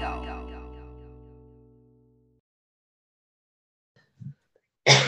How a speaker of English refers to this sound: At the time of recording, you have to cough. Are you kidding me? I was like, how fucking inconsiderate.